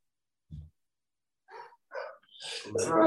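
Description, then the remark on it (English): A soft thump and a couple of brief snuffling sounds, then a sudden, breathy sneeze bursts out at the end, fairly loud against otherwise quiet surroundings. “Bless you, my boy.”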